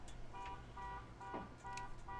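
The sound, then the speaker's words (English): A car alarm blares from across the street, its electronic tone cycling in steady repeating bursts, faint over a low rumble of background noise. “As we hear the siren, well, we hear like the alarm going off in the background.”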